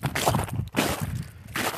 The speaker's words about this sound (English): Give the crunching, I'm walking on a trail this time instead of a road, so there's more ice underfoot.